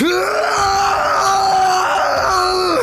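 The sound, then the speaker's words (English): A man lying on the floor, apparently unconscious or asleep and struggling, lets out one long, loud, strained groan of pain, his voice held steady and wavering slightly before the pitch sags and falls off at the end. “Inside, a man was lying on the floor, apparently unconscious or asleep, but struggling against some unseen horror and crying out in pain.”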